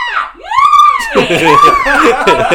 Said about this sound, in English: What about, speaking of the burning building, that scream that Goblin does? Fantastic. It obviously isn't Norman screaming. Yeah, but it's also the exact same each time. It's like depressing a button.